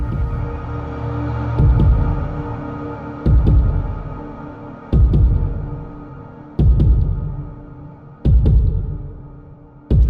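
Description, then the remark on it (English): A heart beating slowly and heavily, with deep thumps arriving at a steady, unhurried pace over a continuous low hum, loud with no voices. “When I awake, I hear a heart beating and know immediately who it belongs to.”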